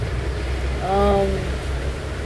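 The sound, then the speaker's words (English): Rain falls steadily, a continuous soft hiss running through the whole clip, with a brief tonal, voice-like hum rising over it in the middle. “We are here in the rain, jamming, vibing, loving, living, healing.”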